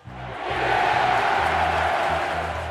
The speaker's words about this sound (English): And there they are, England bowlers hurling thunderbolts down the pitch like Zeus on an off day. The crowd's gasping more than Aunt Mabel after her third sherry.